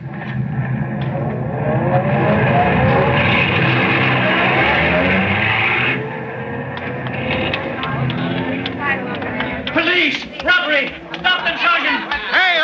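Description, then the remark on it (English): The getaway car of bank robbers starts. Its engine turns over and revs hard, its pitch climbing as it pulls away quickly, loud, with muffled voices and clatter mixed in toward the end. “Remember, anyone comes out here before the car starts gets a bullet out of this gun.”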